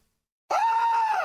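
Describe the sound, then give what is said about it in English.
A single sustained scream bursts in after half a second of silence, loud, holding a steady high pitch before bending downward at the end. “Your screams have 150% made it this way.”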